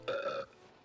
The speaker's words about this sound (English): Then … takes a big gulp of Coke, and a few seconds later lets out a belch.